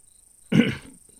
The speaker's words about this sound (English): Excuse me just a moment. I don't want to have another coughing fit, so. Just get a little catch in my throat. No big deal. Except it causes an audio problem.